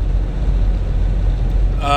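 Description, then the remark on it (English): Steady, loud low-frequency rumble of road noise inside a car driving northbound on Route 69 in Indiana at mile marker 343, continuous throughout, with a voice briefly starting up right at the end. “We're driving northbound 69, north, and we're in Indiana.”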